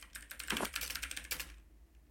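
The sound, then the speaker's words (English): A quick burst of typing a message into a chat on a computer keyboard, rapid irregular clicks running for about a second and a half before trailing off, with one last tap at the end; no voices. “I'll type in the chat.”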